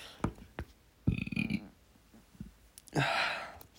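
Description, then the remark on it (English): A short burp rumbles low for about half a second, framed by a few mouth clicks and followed by a breathy, hissing exhale. No one speaks. “I don't know if you heard that, but I just burped.”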